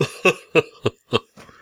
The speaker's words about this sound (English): No, I'm dangerous for my wife's cold because she's hacking up a lung here behind us. Oh, great. Yeah, she's had a great cough for several days.